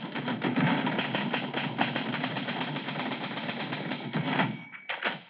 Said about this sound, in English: this morning, the living room in editor Tom Culpepper's house is as active as a newspaper office. Two assistants are sorting out plates and other paraphernalia saved from the fire, while Tom himself is bent over his typewriter in deep concentration.